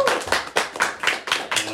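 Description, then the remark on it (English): An audience at a comedy show in Erie applauds, a steady run of sharp, bright claps pulsing about four times a second at moderate loudness, with no voices over it. “Yeah, give a round of applause.”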